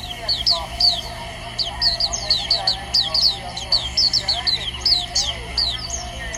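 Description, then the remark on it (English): A caged songbird in a park sings a lively, continuous melody of bright, high chirps and trills repeated in quick succession, an echo following as its voice rises, with a low murmur of people and ambient hum in the background. “You need a very attuned ear to appreciate this bird song symphony.”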